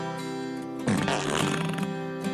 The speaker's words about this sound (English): It makes a fart noise when you start it up.